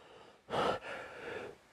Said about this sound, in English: Sorry, had to sneeze then.